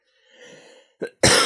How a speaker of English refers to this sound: Excuse me. One cough with COVID during the whole episode is not, that's a good track record. I'm happy about that.